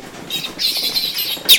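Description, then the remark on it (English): A female runt piglet of about a pound, the one runt out of 24 nursing pigs, squeals in shrill, raspy bursts, a drawn-out cry followed by a sharp, louder squeal at the end, with no talking. “And she do holler. What's going on, little runt?”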